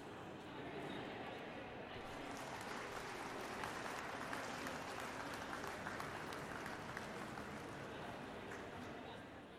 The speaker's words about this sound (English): Hey, let's give this calf, this class a nice round of applause.